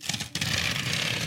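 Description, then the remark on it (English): Paper rustling and crinkling, with a brief pause before a steady stretch of handling noise that continues to the end, fairly quiet and with no talking, as a piece of paper is handled for use as a bookmark. “Do you want a piece of paper? I can give you a piece of paper.”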